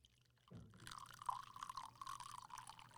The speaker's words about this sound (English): I feel like that's gonna sound gross for the audience. I'm really sorry. That's just me pouring my water.